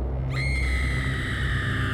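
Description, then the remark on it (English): A woman's sustained, piercing high-pitched scream from across a courtyard, as she runs out of the Dunster House dormitory, begins abruptly and holds steady for well over a second over a low background rumble. It is loud, with no speech. “Suddenly, an ear-splitting scream cut through the quiet from across the courtyard.”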